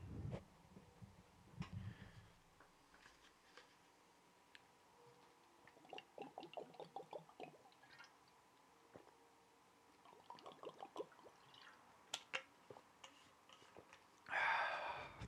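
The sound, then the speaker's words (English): Drinking sounds: quiet clicks, small liquid swallows and gulps of water in two short sips, with a brief rustle or clunk near the end, no talking. “And I'm going to take a sip of my water now.”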